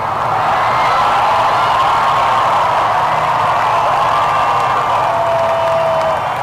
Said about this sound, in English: The 4 days of events reached its pinnacle with Her Majesty making an unexpected appearance on the balcony of Buckingham Palace, where she was greeted by raucous applause from the crowds who'd gathered to pay tribute.